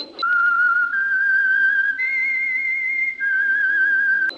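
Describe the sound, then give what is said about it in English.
A person whistles a slow melody of long, steady notes that step up and down in pitch, clear with no talking; the whistle is the signal for the Signal Oil radio program The Whistler. “That whistle.”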